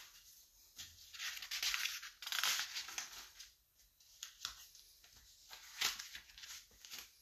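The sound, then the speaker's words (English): Papers rustle and shuffle in irregular bursts, with soft crinkles and brisk swishes, fairly quiet overall, as someone searches through papers for a lost sheet of notes; no one speaking. “I have lost my paper.”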